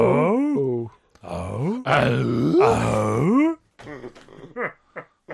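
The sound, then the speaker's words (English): A man's voice imitates the grunt of sitcom handyman Tim "the Tool Man" Taylor: a few loud, guttural, rising-and-falling grunts in a row, trailing off into short choppy vocal bursts. “do you walk around the house going, huh? Tim the tool man Taylor over there.”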